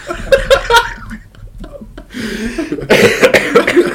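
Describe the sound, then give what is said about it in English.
Harsh, hoarse coughing, a quick cluster of rough coughs, a brief lull of throaty breathing, then another loud, raspy burst of coughing. “My real hoarse cough voice is really helping with it.”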